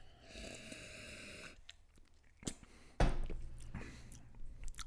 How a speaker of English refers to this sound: Let's see. Hold on. Let me get another sip before.